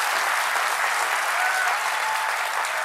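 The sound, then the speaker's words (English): Sustained applause from the studio audience of Stephen Colbert's show, a dense, steady wash of many hands clapping at once, loud and continuous for the whole stretch with no talking over it. “And so the audience applauds, presumably because a sign lit up telling them to applaud.”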